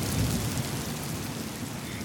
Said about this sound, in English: It's raining. It's a big rainstorm, and it's just about to stop.